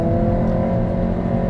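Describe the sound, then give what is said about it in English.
A car engine hums steadily with a rising rev as the driver shifts gear using rev matching, loud, with a continuous low mechanical drone and no voices. “I'll shift just because.”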